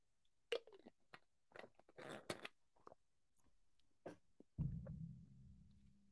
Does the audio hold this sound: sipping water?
yes